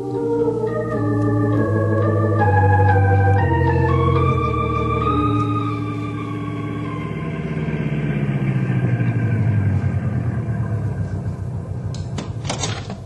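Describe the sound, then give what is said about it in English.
A car engine drives along steadily, its droning pitch rising in steps as if shifting gears, then easing down. Fairly loud, with no talking and a few sharp clicks near the end. “Henry will take you there in the car.”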